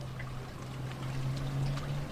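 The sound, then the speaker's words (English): Gentle water laps and trickles steadily on the Tamar River estuary in Launceston over a constant low hum, with small faint splashes scattered through and no voices. “But there's still birds landing gracefully on the surface, rowers parting the waves occasionally, joggers and walkers on the foreshore.”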